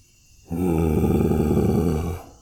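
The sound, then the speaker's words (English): A deep, rumbling creature growl swells in abruptly and holds steady for nearly two seconds, loud and guttural with a rough, vibrating texture, then fades out. No voices accompany it. “At first, I thought it was a bear, but we heard that familiar growl again.”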